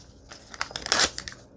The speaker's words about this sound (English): I'll just tear some paper here. This is coffee dyed paper.